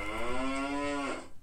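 A single cow moos once, a steady, drawn-out low call lasting about a second before it cuts off. It's fairly loud, with no talking over it.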